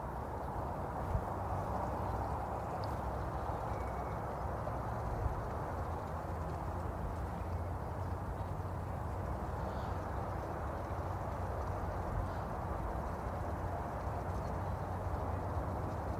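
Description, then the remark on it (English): Water tumbles in a steady, even rush through a larger, flowing creek, with only a couple of faint, brief bird chirps barely breaking through the flow. No one speaks. “The gentle sounds of water tumbling and birdsong.”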